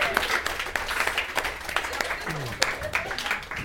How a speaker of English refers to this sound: Hold on. How did they crack that little puzzle? Audience, give yourselves a round of applause.